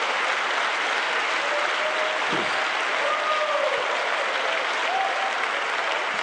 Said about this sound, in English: Somebody clap your hands with me and praise the Lord. Amen.